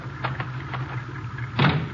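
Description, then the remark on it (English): Garage doors rattle and clank open with a few scraping bursts, the loudest near the end, over the steady low hum of an idling car engine. “I'll open the garage doors.”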